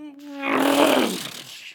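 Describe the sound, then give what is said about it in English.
A voice imitates a NASCAR race car roaring past during time trials: a buzzing vocal tone swells into a loud, rough, breathy roar whose pitch slides downward, then fades out over under two seconds. “They were doing the time trials. And this car.”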